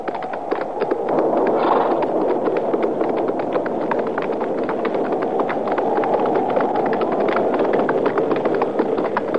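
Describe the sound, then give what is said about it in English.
Horses' hooves clatter steadily in a quick, uneven rhythm, loud, as riders head around a shack out of the wind, with a broad rushing noise like wind blowing continuously underneath. “Now let's ride around to that side, out of the wind.”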